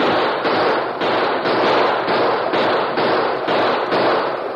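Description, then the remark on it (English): A loud, steady string of gunshots fires about twice a second for several seconds during a fight around wagons on an open prairie, each crack blending into a dense, noisy roar. No voices. “With a final burst of gunfire and with ear-splitting whoops, they fled over the prairie toward the shelter of a wooded hill beyond.”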